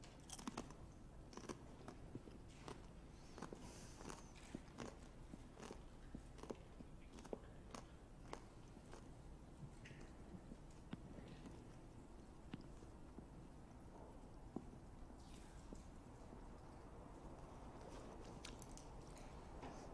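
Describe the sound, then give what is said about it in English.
Steady chewing with soft crunches and wet, squishy mouth sounds, several people eating communion bread quietly together during a communion service, with no talking. “Consider that as we chew together. Let's take the bread.”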